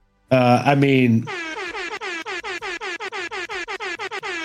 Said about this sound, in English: All the fucking air horns, man. I'm stoked on this fight.